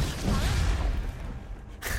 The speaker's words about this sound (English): I literally smile every time that Dawnbreaker explosion goes off.